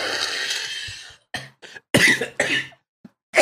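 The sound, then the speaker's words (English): A loud cough fit: a rough hacking burst followed by several sharp coughs in uneven succession, with brief silences between them and no talking. “Yeah, you burp and I cough.”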